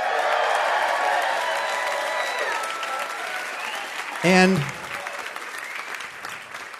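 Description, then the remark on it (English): A crowd in Phoenix, Arizona cheers and applauds with dense, steady clapping that slowly tapers off over several seconds, then a man's voice starts speaking as the applause fades. “As you can hear from this enthusiastic crowd, we are, in fact, in Phoenix right now.”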